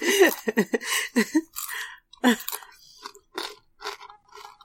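Crunching and chewing of food, a run of wet, uneven bites and mouth sounds that starts dense and loud, then thins into scattered softer crunches.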